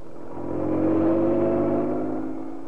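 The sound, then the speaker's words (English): A car engine revs up loudly and roars steadily as a police car carrying Inspector Manson and Sergeant Wright careens out of the gates of Scotland Yard on two wheels and speeds out of London into Essex. The pitch holds high before the sound eases slightly, as if pulling away. No voices. “Inspector Manson and Sergeant Wright left Scotland Yard, careening out of the gates on two wheels, and roared out of London and into Essex.”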